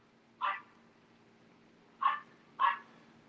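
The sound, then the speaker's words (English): A small dog gives three sharp, high-pitched barks: one, then a pause, then two closer together, over a faint steady hum, with no one speaking. “Why are you barking? I hate fucking little dogs that bark.”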